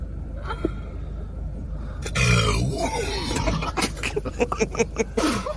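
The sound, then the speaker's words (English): A girl sitting in a parked car lets out a loud, drawn-out burp after drinking Sprite, low and gurgly, followed by a run of choppy, breathy bursts. “That was her burp.”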